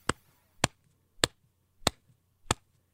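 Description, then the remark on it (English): Five evenly spaced foley punch hits in the style of the classic WorldStarHipHop punch, each a sharp, bright snap layered over a short low thump, ringing out alone with silence between them. “You hear this like bright snap. And then we'll add in like a thump.”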